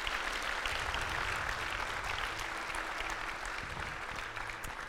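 Steady audience applause fills the whole stretch, a dense crackle of many hands clapping at an even loudness with no pause, and no voices rising above it.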